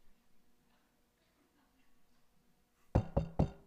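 Three firm, loud knocks on a door in quick, even succession, following a few seconds of quiet low background murmur.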